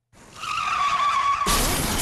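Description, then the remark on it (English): Car tires skid and screech loudly in a sustained, tonal squeal as a car careens down the street, cutting off into a sudden harsh burst of noise as it hits another car, with no voices. “And I look to my left, and it's a car. And it's careening down the street.”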